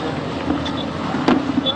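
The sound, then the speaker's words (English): A steady outdoor rumble of slow road traffic on the Maraba-Yanya Road at 4 p.m., with a short swell of passing vehicle noise partway through and faint indistinct voices mixed into the background. “But today, at 4 p.m., there's a slow movement of traffic, a very rare occurrence.”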